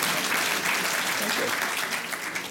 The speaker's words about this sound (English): All right, spontaneous applause.